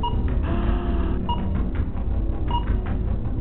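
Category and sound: signal or alarm, timer going off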